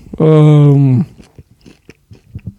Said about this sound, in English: Right, I'm chewing. Same here.